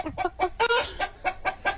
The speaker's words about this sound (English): Chicken music. What's chicken music? Chicken music is like when chickens sing songs, like for.